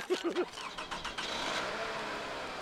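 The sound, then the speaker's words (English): A car engine cranks with a few quick whirring bursts, then catches and settles into a steady, moderately loud rumble as the car pulls away at sunset. “There's a sunset, they're driving off, and an ice cream truck rolls by.”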